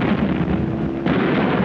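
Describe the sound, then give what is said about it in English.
Two bombs dropped together from an enemy plane hit the ship Lancaster and explode, making it shudder. Heavy explosions roar through the whole clip, a dense, continuous rumbling blast with a fresh surge partway through. Loud, with no voices. “When there were two explosions and the ship shuddered and immediately listed to starboard.”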